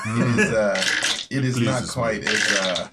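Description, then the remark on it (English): Dice rattle and tumble across a Dogmite dice tray, a dense clattering that surges in two bursts over about three seconds, with a voice partly audible beneath. “And that, and you get to use the Dogmite dice tray.”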